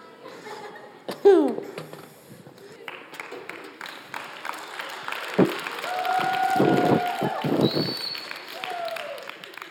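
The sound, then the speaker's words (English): A small audience claps in scattered bursts after a piece of acting, mixed with laughter and chuckling, while voices murmur underneath and one voice briefly rises in a higher, drawn-out tone. “Why are you guys clapping for horrible acting?”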